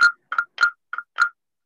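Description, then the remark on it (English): Five short, raspy frog-like croaks from a dab rig come in quick, evenly spaced succession, some doubled, clear with no voices present. “Well, you need the dab bullhorn to amplify the dab frog, I think is what that is.”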